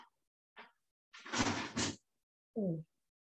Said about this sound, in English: Ooh. Yep. That was your husband closing the door on you too for trying to say that Lance is only.